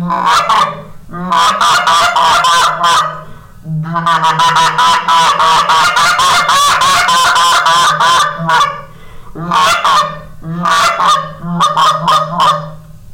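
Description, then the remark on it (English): Rapid, loud sequence of goose honks and clucks from a handheld goose call, fired in quick bursts with brief pauses between runs, continuous for most of the time. “I just started with a long reed goose call and I've gotten better.”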